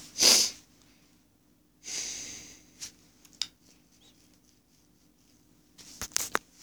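blowing nose

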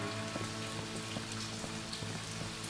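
pouring rain

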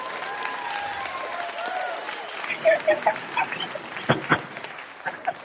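one person clapping hands

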